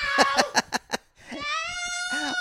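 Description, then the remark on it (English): A few quick, choppy vocal bursts give way to a drawn-out, tonal cat meow in a kitchen, then a second wavering meow, both clear. “they're having a cat parade in my kitchen. And then we hear, meow!”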